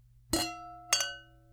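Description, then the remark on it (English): Wine glasses, including one of Beaujolais Nouveau, clink together twice in a toast before tasting, each bright, sharp tap ringing out briefly with a clear, high tone that fades. There is no talking during the clinks. “All right, well, let's cheers and let's try these wines. Cheers.”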